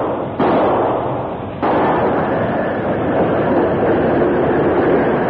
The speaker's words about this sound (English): The Lone Ranger heard the engine's whistle in the distance and placed three of the torpedoes at intervals along one rail. The big engine approached rapidly, maintaining a steady speed, until one of the wheels exploded the torpedoes.